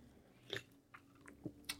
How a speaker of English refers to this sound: Nice. Take a sip of that prickly pear flavor.